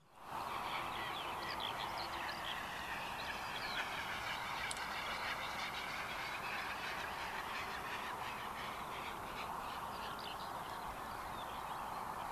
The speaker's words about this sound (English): And the bird is Great Bustard. Look at this big bird.